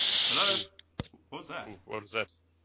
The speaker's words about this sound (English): You fell into like the fucking twilight zone and it was just static. That was a white noise. Sorry, guys. Yeah, it was meant to be a snake noise.